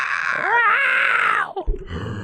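A man screams loudly for about a second and a half, a raw, sustained cry with a wavering pitch, then breaks off into a short burst of low, rumbling noise.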